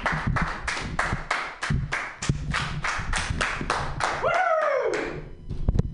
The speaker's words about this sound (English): So let's give him your round of applause, all two of you.